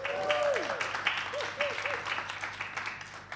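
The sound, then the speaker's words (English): An audience applauds steadily throughout, a dense crackle of many hands clapping at once, with a few short sliding whoops rising and falling over the clapping, as Rubens Gardelli, a new guest, joins on stage. “Ruben, round of applause for Rubens.”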